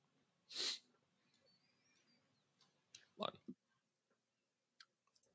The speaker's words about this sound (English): Oh, he's got the sneezies. Bless you, sir.